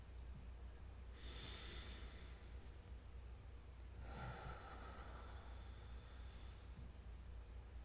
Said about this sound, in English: Let's visualize a column of air as we breathe in. The air rises. As we breathe out, it settles down. Let's take another breath.